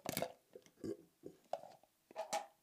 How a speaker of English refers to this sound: I just burped while I took a drink of water. That was weird.